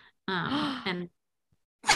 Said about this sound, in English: I love a gasp. My breath was just taken away.